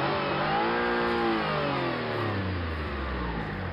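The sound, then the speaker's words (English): A 1,000-horsepower electric car accelerates hard, its loud motor whine sweeping upward in pitch over a steady roar of road and wind noise, with no voices. “And this is an electric car that will do it. So it's 1,000 horsepower.”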